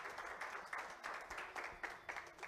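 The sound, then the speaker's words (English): A crowd of people claps together to show appreciation, a steady, sustained round of applause, a dense wash of overlapping hand claps with slight swells in intensity, no voices. “Why don't you give them a hand clap to let them know that we appreciate them.”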